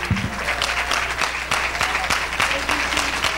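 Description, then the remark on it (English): A church crowd stands and applauds in praise of the Lord, many hands clapping in a dense, continuous patter that stays loud for the whole stretch, with a low murmur of voices underneath. “Let's all stand and clap our hands and praise the Lord.”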